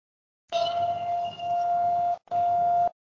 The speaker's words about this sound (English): Can you hear that fire whistle in my background?